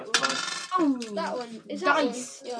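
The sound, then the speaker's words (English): Several dice, rolled for damage in a game, clatter and tumble across a hard surface, with bright ringing clicks and a brief spinning rattle before settling, moderately loud. “I'm rolling all these dice for damage.”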